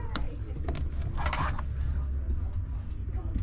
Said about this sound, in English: Oh, refrigerator. Ooh. It's so tight though, it's hard to open the refrigerator.